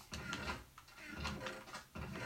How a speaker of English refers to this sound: I wonder if the podcast just hears all of these chests being opened. Yeah, they do, actually, believe it or not.